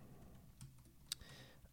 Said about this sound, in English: Cool. You can hear my keyboard clicking.